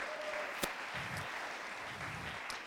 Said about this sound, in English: So a big hand of applause for the SBDC and OEDIT.